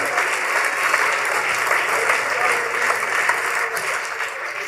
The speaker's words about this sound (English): Take 20 seconds and just clap your hands and rejoice. Let the devil know you know.